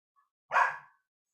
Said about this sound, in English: My dog is signing off for us.